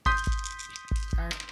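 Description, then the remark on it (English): Three dice are rolled, clattering onto a hard surface in two quick pairs of sharp knocks, each hit followed by a brief rattle, over a faint steady tone in the background. “So roll three.”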